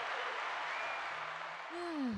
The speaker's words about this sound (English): And then sometimes if I'm really lonely, I'll do this thing where I tell a joke and then I'll let them laugh. And then I'll just kind of pretend that that then escalated into clapping because it was such a good joke.